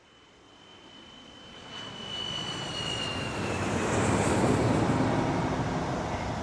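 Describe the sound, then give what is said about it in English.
An airplane engine roars steadily, swelling louder over the first few seconds, with a thin high-pitched whine riding over the broad rumbling rush. No one speaks. “On a hot August afternoon, we stepped off the plane in Minneapolis into the scorching sun and began our two-hour drive south.”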